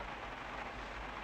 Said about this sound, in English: Cause it's also pouring now.